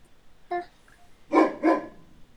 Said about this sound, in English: Do you hear the doggy?